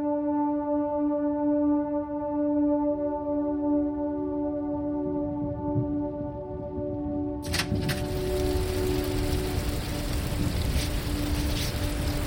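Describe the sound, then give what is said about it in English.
A storm with heavy rain on a dark night at Wilson Bay: a low, steady rumble under a droning horn-like tone, then a sudden loud hiss of pouring rain bursts in and continues to the end. “Storm's really raging out there, isn't it?”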